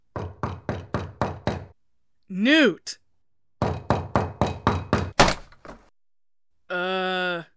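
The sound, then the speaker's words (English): Rapid, heavy pounding on a door in two bursts, with a voice shouting between them, ending in a loud splintering crash as the door breaks through. A sustained vocal sound follows. “Now there's a hole in my door.”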